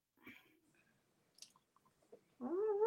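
A few soft clicks and chewing-like noises, then a loud cat meow with a rising, drawn-out pitch that cuts in at the end.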